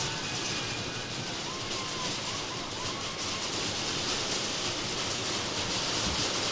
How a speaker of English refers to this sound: Hear the stomping on the bleachers. That must be their thing with corners. That's when they're happening.